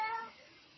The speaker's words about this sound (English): Listen, my cat is making noise. Can you hear it?